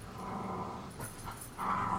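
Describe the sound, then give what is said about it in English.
Steady growling from two dogs playing tug of war, a rough rumbling that keeps going with a brief dip in the middle before swelling louder again, with no voices. “I was just like, yeah, there's two of them and they're both growly.”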